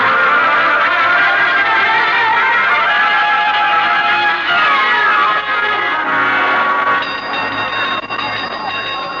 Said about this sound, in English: Why, Mr. Boynton, what made you ring the gong for a fire drill? Well, I heard you calling the fire department, and I thought...